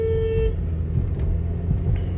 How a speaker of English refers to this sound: Yep, just honked at somebody because they were driving like 2 miles an hour in a 30-mile zone.